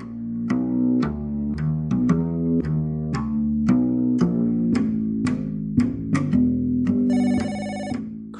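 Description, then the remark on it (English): A mobile phone rings at 7 a.m. on a Saturday with a bright, melodic ringtone, a quick run of repeated electronic notes playing loudly for several seconds, with no voices. “I've had 3 hours sleep and my mobile is ringing.”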